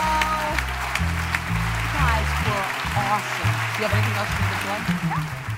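An audience claps for two guest speakers at the end of a talk in a steady, dense wash of applause lasting several seconds, with a loud, rhythmic music bass line pulsing underneath.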